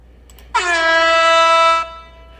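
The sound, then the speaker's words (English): A single loud, sustained air horn blast with a bright, brassy tone, starting abruptly and holding steady for over a second before cutting off, heard alone with no talking. “That doesn't deserve an air horn.”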